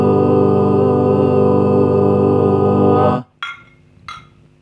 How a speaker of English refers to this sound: That was a cheers. Because that was a cheers to you, the viewer, the listener. It was a cheers to a episode that is currently being listened to.